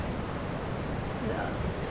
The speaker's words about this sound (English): Okay. And what is, just to ask now, the dam, it's still clearly a very functional dam. There's water roaring out of that. What's the use now? Are they harnessing it for hydropower?